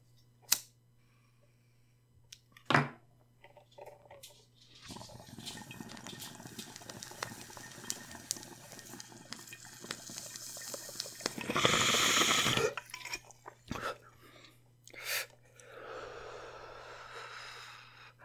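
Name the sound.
water bubbling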